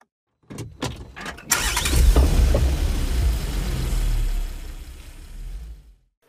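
A few sharp clicks and knocks, then a car engine catches and starts, settling into a steady, rumbling idle for several seconds before cutting off.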